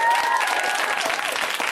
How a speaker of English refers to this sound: But by the way, round of applause for the comics on the show. They're in back. They can hear you.